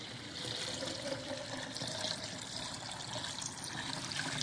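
Water pours steadily into a jug, a continuous, fairly quiet splashing trickle lasting the whole few seconds with no voices over it.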